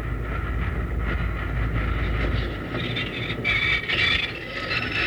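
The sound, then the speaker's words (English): A train grinds to a halt, heavy low rumble fading out as squealing, screeching brakes rise and flicker for several seconds, loud with no voices. “He's got the train stopped, Jingles.”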